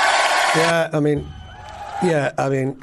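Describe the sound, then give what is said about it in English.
A cheering sound effect found online: a lone voice lets out loud, drawn-out whooping cries in a few bursts with short gaps, mimicking a cheering crowd rather than sounding like a real one. “So you've made it look like you've been busy, but in actual fact, you've Googled one thing, which is sound effects of cheering.”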